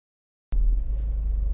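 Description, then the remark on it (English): After a moment of silence, a steady low rumble starts abruptly and holds: a car's engine and road drone heard from inside the cabin while driving home from work. “I'm recording this in my car while I'm driving home from work”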